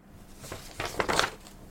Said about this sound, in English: I'm printing off a few of my favorite stills from the videos. I even bought that glossy photo paper from Staples. So they're gonna come out real nice.